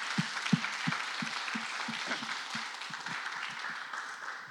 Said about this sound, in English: First thing I want to do is, can we just give our worship team a round of applause? They are phenomenal.